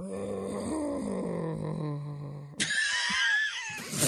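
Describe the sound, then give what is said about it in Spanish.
A human voice imitating a tiger's moan while mating: a low, drawn-out groan sliding slowly downward, then abruptly breaking into a harsher, higher, raspy cry. “O sea, tú buscaste gemido de un tigre mientras está en el chacachaca.”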